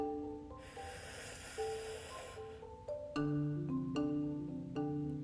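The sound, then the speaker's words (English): One long, deep inhale drawn in through the nose for about two seconds during a simple inhale-exhale breathing exercise, breathy, over soft, steady background music that swells after the breath ends. “We're going to go ahead and start breathing. Let's inhale.”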